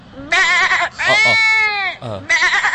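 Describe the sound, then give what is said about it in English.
A person imitates a lamb from inside their mouth, producing several loud, wavering, nasal bleats in quick succession. Each cry quavers in pitch, and no one speaks over them. “Dis nie 'n small puppy. Dis 'n fucking skapie.”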